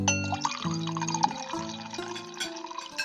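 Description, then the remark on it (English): A servant pours wine steadily into a glass, a gurgling stream with ringing, shifting tones as the glass fills, lasting a few seconds with no voices. “And like as I say that, like I signal to one of the servants to come pour me some wine.”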